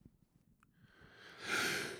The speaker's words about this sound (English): And yawning on my own podcast. How rude. How rude.